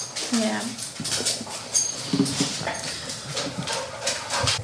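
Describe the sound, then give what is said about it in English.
Dogs let inside because company has arrived whimper and pant, with short whiny cries and breathy huffing scattered through the stretch, while voices murmur around them. “Now, I know everybody's hearing the noise. Yes, the dogs are in because they're dogs.”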